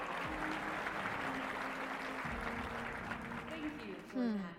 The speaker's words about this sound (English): Head of research and development. Give a round of applause for Audrey Shaw!